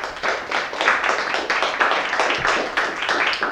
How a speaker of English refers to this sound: So if you could join me in a round of applause for our speaker.